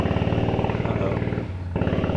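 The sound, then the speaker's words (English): A boat engine sputters to life with a loud, rapid rattling chug, almost like machine-gun fire, briefly dropping to a lower drone before revving back up. No voices. “So when that boat started up”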